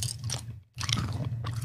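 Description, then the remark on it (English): Chewing of a soft strawberry iced donut right into the microphone, wet squishy mouth sounds with a brief pause, loud, no talking. “Are you chewing into the microphone?”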